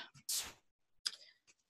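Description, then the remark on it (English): A Goddess card deck is shuffled briefly before a card is pulled, giving two short bursts of papery rustling and flicking, fairly quiet, with a pause between them. “So let me shuffle these guys up.”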